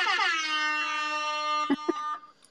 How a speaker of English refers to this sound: We normally give you an air horn, so let me get that ready for you.